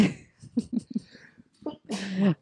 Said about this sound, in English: Bless you.